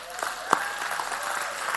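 During a morning church service, an audience claps steadily for EFJ, the church's group of six- to 10-year-olds. A dense wash of many hands is heard, with a few sharper individual claps standing out, fairly loud throughout.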